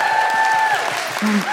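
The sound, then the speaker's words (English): An audience at a live show applauds a pianist with steady, dense clapping throughout, while a few sustained high whistle-like tones ring out over the crowd noise. “That's the first round of applause I've had where I haven't actually touched the piano yet.”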